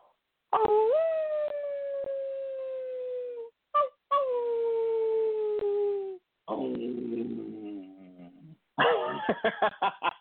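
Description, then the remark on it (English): A person imitates a wolf howl with long, sustained, wavering voiced howls, several in a row, loud, ending in a rougher, broken yelping burst. “A wolf really howls like this.”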